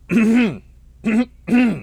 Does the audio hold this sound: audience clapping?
no